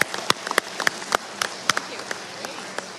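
Audience applause: many hands clapping in a dense, irregular patter of sharp claps over a steady hiss, with a few louder claps standing out before it thins toward the end.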